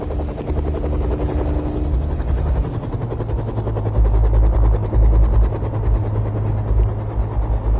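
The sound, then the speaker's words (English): A helicopter's rotor thrums steadily and loudly, a dense rhythmic chop with a deep engine drone that swells slightly midway and keeps going without pause. “I called for the chopper as soon as I saw you two walking back from the lake.”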